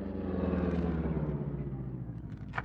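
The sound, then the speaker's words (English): A car engine rumbles and steadily winds down as the car pulls over on the side of the road and stops, with a short sharp click right at the end and no voices. “I'll stop the car, Cato.”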